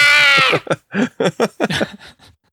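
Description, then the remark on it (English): A voice imitates a lustful shrieking cry, like crying mixed with lust: a loud, piercing, sustained wail at the start, then a quick choppy run of about eight short vocal bursts that fade out. “It's got some weird like bat shriek, like My neighbors are gonna love that.”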